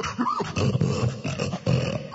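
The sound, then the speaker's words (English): A man, a contestant in a hog-calling contest, imitates a hog with loud, rough snorts and grunts, a continuous gravelly burst lasting a couple of seconds with a brief rising squeal early on. “He's got some good snorting.”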